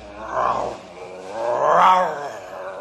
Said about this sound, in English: What's that? A grizzly bear.